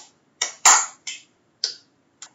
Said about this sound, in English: And when, like, I asked him, okay, clap your hands to the sound. This is what he did.